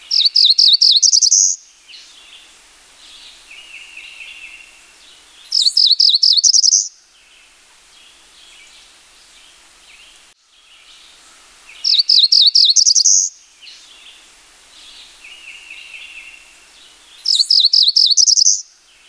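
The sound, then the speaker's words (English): A cerulean warbler sings four times, each a short buzzy burst of rapid notes rising to a high trill, separated by pauses of a few seconds, clear with faint background birds. “Anyone who knows the song of this bird and visits the proper habitat will have no trouble in finding a cerulean warbler or multiple cerulean warblers in any given morning.”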